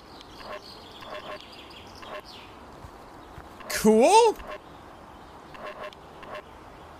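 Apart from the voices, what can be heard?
bird calling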